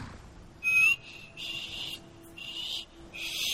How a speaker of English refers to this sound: I mean, I just can't seem to whistle very well.